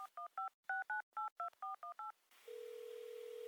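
A quick run of about ten cell phone keypad dialing tones, crisp two-note beeps in an even rhythm, followed by a steady low hum of a ringing line, as a borrowed cell phone is used to call feminist author and activist Kate Schatz. No voices.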